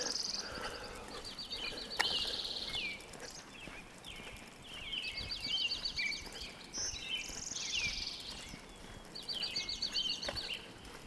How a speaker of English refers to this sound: The panorama of the dawn chorus. You know, the near, the far, the left, the right, the center, the front, the back. It's a surround sound experience.